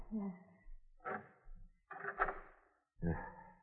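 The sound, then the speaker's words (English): A door is pulled open, its hinges creaking and groaning in several drawn-out bursts with short pauses between them. No one speaks. “Now, keep back while I open the door.”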